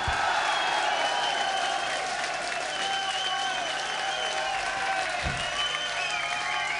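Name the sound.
audience applause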